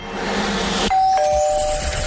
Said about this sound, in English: The doorbell will ring on the radio and then you have to be listening all the entire 3 hours. We could ring that doorbell at any time,